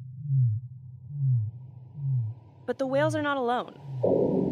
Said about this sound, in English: That's the sound of an air gun. Energy companies send explosions of compressed air into the ocean to help them find oil and gas. The guns go off every 10 seconds for weeks at a time.